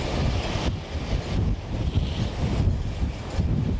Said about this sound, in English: It's foam from a very, very agitated sea with nowhere to go. It whips up on the wind and blows about like unpleasant, salty candy floss.